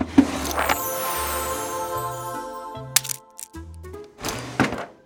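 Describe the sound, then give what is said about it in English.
A desk drawer slams shut with a sharp wooden thunk as confiscated candy is put away, over a bouncy musical backing, with a few other knocks and clatters around it. “This is going in the drawer.”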